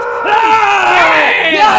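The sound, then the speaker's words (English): A group of people standing in a circle scream and yell at each other at full volume. Overlapping voices form a dense, sustained, loud clamor, with rising and falling shouts throughout. “We're all in a circle just like screaming to each other.”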